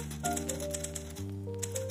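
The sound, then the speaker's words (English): Typewriter keys clatter in quick, uneven bursts as someone types an entry in a room, the sharp clicks sitting over a steady, sustained low musical tone that shifts pitch midway. “Which brings me to the present moment, typing this entry in my room, hoping not to disturb my neighbors with the maddening clatter of keys.”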